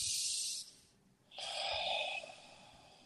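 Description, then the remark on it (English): A loud deep breath demonstrated as a breathing exercise for stress: a rushing, airy inhale, a brief pause, then a long breathy exhale with a slight hum to it. No talking. “But you need to get that because breathing is the most important part and it's free, but you need to be aware. When you stress, just go.”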